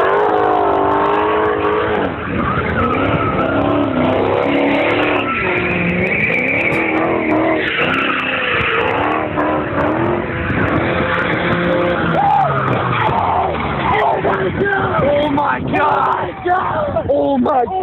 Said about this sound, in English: He just gets plowed through by two other cars that are drag racing. Oh my God. Yeah. I got some natural sound of the whole ordeal here. Listen to this.